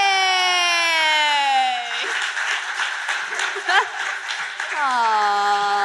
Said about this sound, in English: with no further ado, and a big round of applause